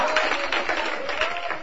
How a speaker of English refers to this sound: Oh, let's clap our hands and shout hallelujah to the Lord.